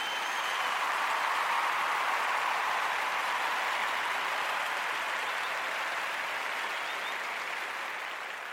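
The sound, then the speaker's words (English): A church audience gives a clap offering to the Lord, clapping together in a dense, steady wash of applause that holds for several seconds without voices, then tapers off slightly at the end. “Let's get the Lord to clap offering on that note.”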